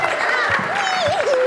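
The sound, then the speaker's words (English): Steady clapping from an audience for a few people who helped, a dense patter of hands with high-pitched cheering or whooping voices rising over it, fairly loud. “Can everyone give them a clap?”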